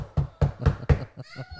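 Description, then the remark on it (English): Four firm, evenly spaced, loud knocks, like a fist rapping on a door, imitating a police officer knocking, followed by a short voiced sound at the end. “You know, fucking he knocks on the door.”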